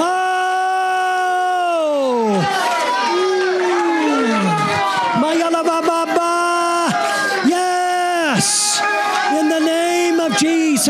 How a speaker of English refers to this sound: And what I want you to consider doing for 30 seconds is give God praise. I mean, lift up your voice. Clap your hands. Come on. Give God praise.